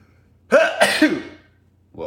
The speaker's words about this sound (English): Wait, hold on, I'm going to sneeze.